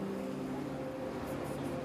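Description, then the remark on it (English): A passing bus engine drones steadily, a low, constant rumble with a tonal hum layered over broad road noise, holding even loudness throughout with no one speaking. “Hang on a second, the bus passes.”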